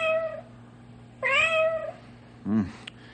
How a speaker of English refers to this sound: I'd say the cat is right here in between the wall.